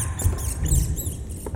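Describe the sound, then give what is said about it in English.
A pet rat scurries in the conservatory of a mansion, quick light patters and faint high squeaks overlapping in a busy, continuous skitter over a low rumble, with no talking. “Watch your step for that creaking floorboard and Sam's pet rat.”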